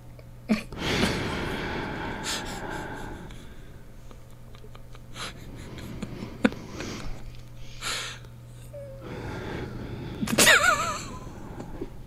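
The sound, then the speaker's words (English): Heavy, noisy breaths close to the microphone come in a few loud bursts, with quieter sniffing and breathing between them over a faint steady hum. No one speaks. “What the fuck are you doing? Breathing.”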